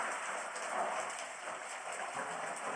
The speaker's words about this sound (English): And as you notice that this rain is all around you, it begins to deepen you into your emotions. And as it deepens you into your emotions, you can feel it now all around you.